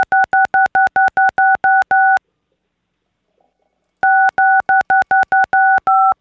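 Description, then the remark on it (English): Telephone keypad tones dialing the digit six: a rapid string of identical beeps, about ten in quick succession, then two seconds of silence, then another fast run of the same loud, clean tones. “I'm dialing a bunch of sixes.”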